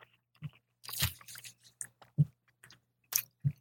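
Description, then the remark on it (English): Someone bites into a slice of pizza and chews, making a few crunchy, crackling bites and soft wet chewing sounds in irregular bursts, with low thumps between them and no talking. “So let's take a bite of this.”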